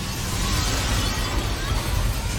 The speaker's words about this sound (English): Explosion! Oh, more explosions!